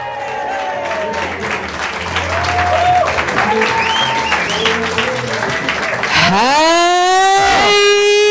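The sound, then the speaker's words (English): A crowd at a live Little Dum Dum Club show in Brisbane claps steadily with scattered cheers and whistles for about six seconds, then a loud, rising, drawn-out whoop cuts in over the continuing applause. “That was a little bit worrying when we walked out and we had to ask for our own applause.”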